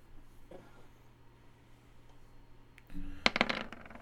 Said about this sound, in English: So that's going to be, you're going to roll 2d12, but you've already maxed out the first two dice. So you're sitting at 24 damage no matter what. So roll 2d12 right now